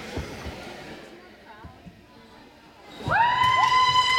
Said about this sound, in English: The crowd is going wild as the LA Municipal Dance Squad takes the field.